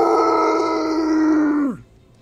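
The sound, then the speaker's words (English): A person imitates a monster's roar with a loud, sustained, growling voice held steady for under two seconds, then sliding sharply down in pitch as it cuts off. “yelling out, frustrated, slams its fist against the side of the ruins, the dwarven ruins here, smacking and breaking the stone, roaring out as it does so with a roar!”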